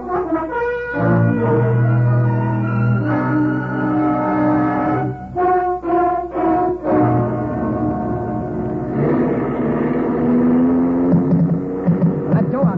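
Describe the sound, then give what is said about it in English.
A car engine roars steadily at speed, a loud continuous drone whose pitch shifts and climbs as it accelerates, with a few brief dips in the middle. “I'll drive you.”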